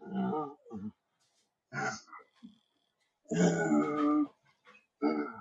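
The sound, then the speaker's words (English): A dog, mad at its owner, grunts and grumbles in several short bursts, then lets out one longer, louder growling grumble before a final short grunt, with brief quiet gaps between. “Man, the only toys my dog just keep saying toys. No, he's mad because Daddy ain't taking it.”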